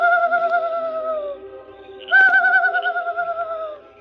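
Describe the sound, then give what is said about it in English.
A man imitates a night bird's call as a signal at a camp at night: two long, hooting tones separated by a short pause, the second rising in sharply and wavering, clear with nothing else around. “He signaled with an imitation of a night bird's call.”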